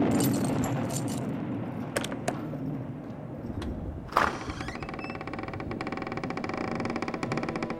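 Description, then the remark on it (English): A few scattered metallic clinks and jingles of a set of corroding house keys, taken from a hollow nook behind a loosened brick in a wall, ring out sharply over a steady low mechanical hum, with one brighter rattle midway through. “Inside the hollow nook lay a set of corroding house keys.”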